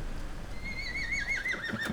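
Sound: horse neighing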